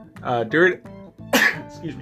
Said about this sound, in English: During that process, I'm still trying to, excuse me, I'm about to sneeze here.